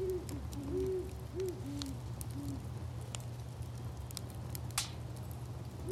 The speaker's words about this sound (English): We had some owls in our backyard while we had the fire going. And here's what it sounded like.